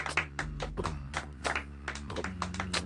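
hands clapping

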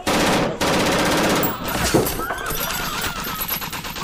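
gunfire

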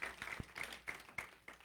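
audience clapping hands

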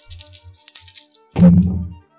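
dice rolling

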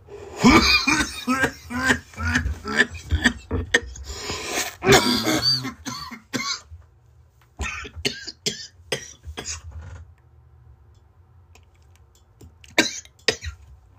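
fit of coughing

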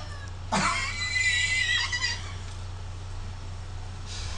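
roosters crowing

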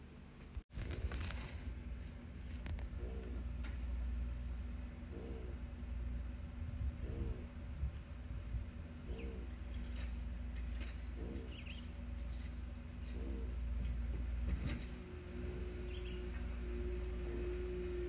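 cricket chirping

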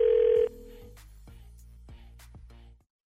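telephone ringing

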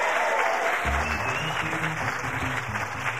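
audience applause

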